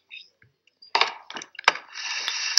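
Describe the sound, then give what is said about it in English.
A chair creaks and squeaks as a person's back moves against it: a few short, rough bursts, then a longer, strained creak that stretches out at the end, faintly resembling a fart. “Every time my back moves on this chair, it sounds like you fart.”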